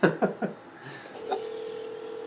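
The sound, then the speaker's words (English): A phone call placed from a cell phone rings: three quick blips at the start, then a steady, sustained electronic tone that holds evenly to the end, clear with no talking. “And it's ringing.”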